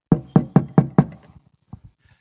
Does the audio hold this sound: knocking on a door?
yes